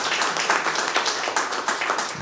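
An audience applauds, a dense, steady wash of many hands clapping at once that holds at an even loudness for about two seconds with no voices over it.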